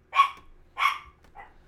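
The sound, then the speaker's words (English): A dog named Baby Dog barks twice in quick succession, sharp, followed by a softer, shorter third bark trailing off, with no talking; she is barking at people cleaning the building outside the door. “What's up, baby dog? What's happening? What's going on? Who are you barking at?”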